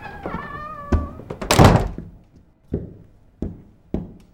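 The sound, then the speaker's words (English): A front door creaks briefly, then a heavy thud lands, followed by three softer, evenly spaced thumps, like footsteps or bumps, as someone comes into the house. No one speaks. “the door is wide open. Are you there? I'm coming in.”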